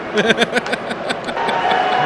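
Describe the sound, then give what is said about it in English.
A baseball ballpark crowd claps during a game on NFL draft night, a flurry of sharp overlapping claps at first that thins out into a steady wash of crowd noise and murmuring voices. “It's a lot of clapping going on at the ballpark.”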